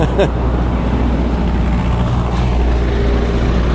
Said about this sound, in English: There's a big truck coming from behind. This is in my world, not in your world, don't worry.